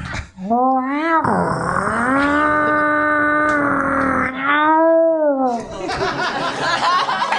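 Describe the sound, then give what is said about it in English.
A voice imitates a chainsaw and a lawnmower at once, holding a loud, buzzing drone that revs up and down in pitch for several seconds before breaking into a rough, sputtering rattle. “can you open the door, but also do a chainsaw and a lawnmower at the same time?”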